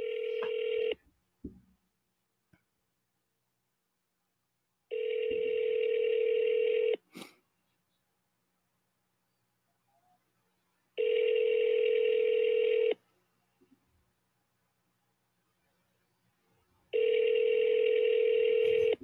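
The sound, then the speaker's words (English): An outgoing call rings unanswered: a steady ringback tone sounds in four evenly spaced two-second bursts separated by quiet pauses, with a faint click or two between rings and no voices. “No answer. They're not picking up.”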